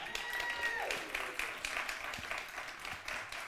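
A church audience breaks into steady applause as a new worship pastor is introduced on stage, a dense wash of many hands clapping at once that holds fairly loud and even for several seconds, with a brief whistle-like tone early on.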